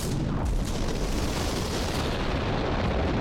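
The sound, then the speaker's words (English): A deep, loud rumbling roar from an underground explosion in a coal mine pit about 45 metres deep, just before 3 p.m. on 10 September 1886, sustained throughout without a sharp onset, dense low-end boom and crackling debris, with no voices. “Above ground, a loud explosion was heard, and on further inspection, they realised that an explosion had occurred.”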